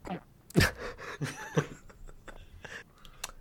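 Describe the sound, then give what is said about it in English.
A nervous gulp, a sharp wet throat click followed by a few softer swallowing and breathy mouth sounds, fairly quiet and with no words spoken. “Velma, audibly gulping.”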